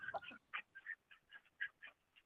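A flock of ducks quacks in a rapid, irregular series of nasal calls, overlapping slightly, moderately loud with no talking over them.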